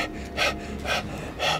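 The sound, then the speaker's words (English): A voice imitates a creature's breathing easing from a growl to slow, calm breathing: three soft, airy breaths at an even pace, quiet, with no talking. “Oh, and there's really a brief moment where you see like the face go a little slack and the breathing go from a growl to a.”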